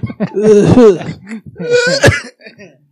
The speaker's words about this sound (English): I held my breath and it hurt. Because I was about to cough.